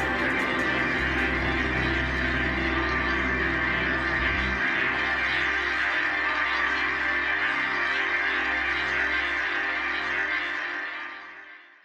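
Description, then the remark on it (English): A loud, rumbling motorcycle engine drones steadily for several seconds as the motorcycle passes by, before its roar fades away at the end. No one speaks. “Sorry about that. That was a motorcycle.”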